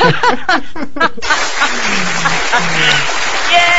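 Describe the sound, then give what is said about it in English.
A voice speaks briefly, then a round of applause breaks out: dense, steady clapping lasting a few seconds, with a low voice cheering underneath. “Go ahead and give yourself a round of applause.”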